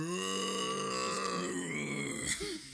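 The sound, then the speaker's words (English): A person voices a long, low, growling roar, rough and sustained for a couple of seconds with a gravelly texture and a brief upward lurch near the end, imitating the dinosaur-like roar something made as it fell. “It falls and it roars.”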